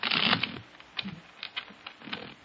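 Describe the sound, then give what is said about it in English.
A deck of playing cards is shuffled during a card trick: a quick, dense riffle burst at the start, followed by scattered light taps and clicks as the cards are squared and handled. No voices. “Now, I shuffle the cards.”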